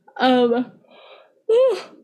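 A drawn-out voiced yawn: a long groaning stretch, a breathy exhale, then a second rising vocal sigh, with no words spoken.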